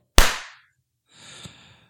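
A single sharp hand clap, made to sync a recording, rings out loudly and fades quickly. About a second later comes a softer, hissy rustle with a faint tap in it. No one speaks.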